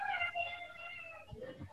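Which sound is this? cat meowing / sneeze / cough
cat meowing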